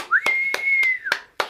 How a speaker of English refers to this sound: Yeah, a bit of crowd noise.